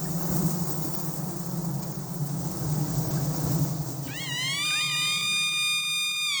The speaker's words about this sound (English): Sound of a chimpanzee greeting the day, announcing, "Here I am, who's out there?"